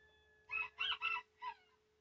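A rooster crows once up close, a loud, harsh cock-a-doodle-doo in four bright bursts with a shorter final note, followed by a faint cluck, over a steady low hum.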